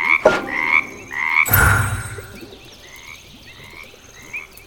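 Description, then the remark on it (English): Several frogs in a yard croak loudly in a repeated, overlapping chorus, with bright rhythmic calls and a brief louder burst of noise partway through; no one speaks. “Quit croaking so loud.”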